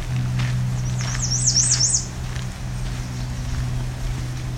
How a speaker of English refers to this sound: I heard a myrtle warbler in the distance.